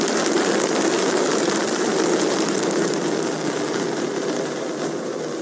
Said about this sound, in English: As the rocket took off